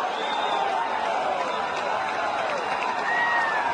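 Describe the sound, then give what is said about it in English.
A large outdoor golf gallery at the 17th hole roars and cheers continuously after a putt from about 12 metres down the hill, a dense wall of crowd noise with a few whistles rising above it, loud and sustained throughout. “This crowd has been like a volcano waiting to erupt.”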